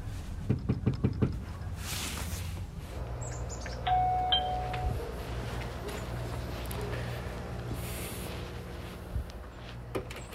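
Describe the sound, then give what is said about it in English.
A quick run of about six sharp knocks on a front door in Salisbury near the start, then a faint chime-like tone and a steady low outdoor hum with occasional chirps. “I essentially just kind of knocked on a lot of doors.”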